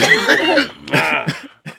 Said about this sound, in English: Nah, I'm going to be coughing.